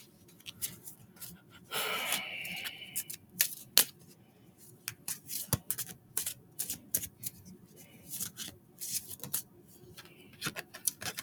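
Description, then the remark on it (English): Irregular crisp clicks and flicks, with a brief fluttering riffle early on, as a deck of playing cards is shuffled somewhat clumsily, with no one talking. “Oh, I'm shuffling horribly.”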